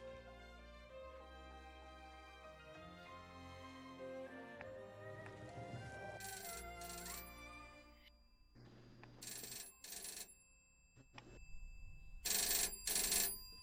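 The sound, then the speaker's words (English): An old-fashioned telephone bell rings in three loud, rattling bursts separated by short pauses, over a steady bed of sustained musical tones, with no one speaking. “Phone continues to ring.”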